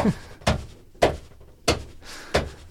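A hand smacks a box of DVDs four times in a steady rhythm, each hit a sharp, hollow thump close by, with quiet pauses between and no talking.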